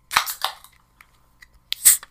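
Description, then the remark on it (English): Beer cans cracking open: sharp metallic pops each followed by a brief fizzing hiss, in two bursts with faint clicks between and no talking. “Every Beer Crack Intro”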